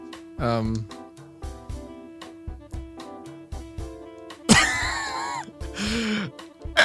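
A loud, rasping throat clearing breaks out midway, a harsh noisy burst set among short grunting vocal sounds and hums.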